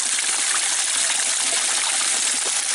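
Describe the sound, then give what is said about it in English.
Water rushes steadily through a partially opened valve, left running to keep the system from freezing, a dense, hissing flow that stays constant and fairly loud from start to finish with no voices. “We're letting some water run through to keep it from freezing.”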